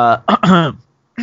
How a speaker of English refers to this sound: yep, that's me clearing my throat because it's about to be serious.